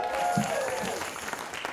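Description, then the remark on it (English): An audience claps at the end of a live show at the Melbourne Cabaret Festival, a dense, steady patter of many hands filling the short stretch at an even loudness, with a faint voice briefly showing through underneath. “That would be... Clapping there, yep.”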